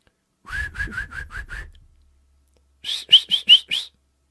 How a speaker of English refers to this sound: I can't whistle because of my mustache right now.